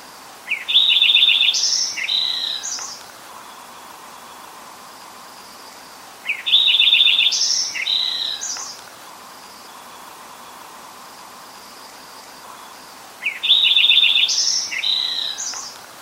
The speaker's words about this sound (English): So here is a Lincoln's sparrow singing.